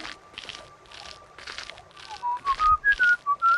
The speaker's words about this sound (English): Only … whistling